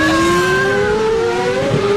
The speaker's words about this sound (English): Doesn't it sound like there's something wrong with this car when they're revving it up? Those engines work at like speeds. Right. The RPMs and everything are just... Listen to that.